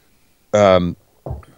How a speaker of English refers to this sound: Excuse me. I felt like it was going to be a more satisfying burp than that.